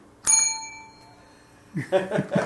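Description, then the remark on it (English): A single soft bell ding rings out clearly and lets its tone fade over about a second before voices start talking. “We've nuzzled the bell.”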